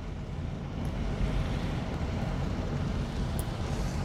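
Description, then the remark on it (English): Heavy rain pours down in a steady, unbroken roar, a dense wash of hiss over a deep rumbling undertone that stays even throughout, with no voices. “It's raining pretty hard now.”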